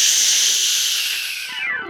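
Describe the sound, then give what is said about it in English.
A voice imitates whooshing down a water slide: a loud, steady, breathy hiss held for nearly two seconds, then tapering off with a faint falling whistle at the end. “I hope you enjoyed your trip down the water slide as much as I did.”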